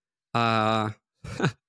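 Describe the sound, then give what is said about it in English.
A person yawns aloud: a drawn-out, steady voiced groan lasting about half a second, then a brief pause and a shorter, breathier sighing exhale that trails off. “I've been yawning a lot throughout the show”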